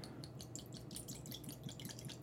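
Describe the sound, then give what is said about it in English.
Young whisky with added colouring glugs and trickles steadily into a glass, a quick run of small bubbly splashes and drips lasting a couple of seconds, with no one speaking. “So I'll just open it up and we shall pour it.”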